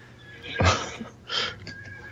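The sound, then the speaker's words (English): A person imitates a horse's whinny with a loud, breathy burst followed by a shorter second neigh-like cry, otherwise without talking. “When you switch from the cow to the horse, it's multitasking.”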